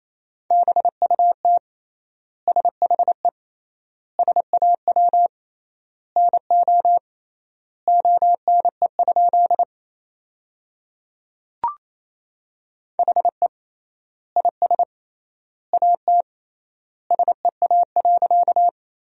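Fast Morse code at 28 words per minute with triple word spacing, sending sentences built from the 300 most common words, beeps in a steady mid-pitched tone, with quick bursts of dots and dashes separated by wide gaps between words and a brief click partway through. No voices.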